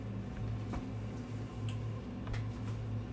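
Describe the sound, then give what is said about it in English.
Dice rolling, heard as a few scattered sharp clicks and taps against a steady low background hum, fairly quiet, with no one speaking. “Shiny dice.”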